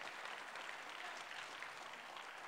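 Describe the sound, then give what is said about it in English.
A church audience claps their hands to bless the Lord in a steady, dense wash of applause, many overlapping claps blending into a continuous bright crackle at an even level throughout, with no talking. “Is there anybody in this church that's going to clap their hands and bless the Lord this morning?”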